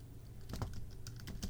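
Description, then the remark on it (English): Rapid clicking of computer keyboard keys as someone Googles something, a series of sharp taps in quick irregular bursts, fairly quiet over a low steady hum. “I'm Googling something real quick so you can hear my keyboard.”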